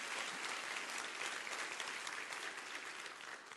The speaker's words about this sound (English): Okay, good. Clap your hands